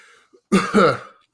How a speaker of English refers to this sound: She used to cough.